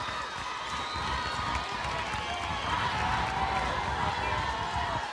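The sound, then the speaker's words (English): The Alabama crowd, on its feet before the first pitch of the seventh inning, cheers in a steady, unbroken roar, a dense wash of many voices holding at an even loudness throughout with no single voice standing out. “The Alabama crowd already to their feet.”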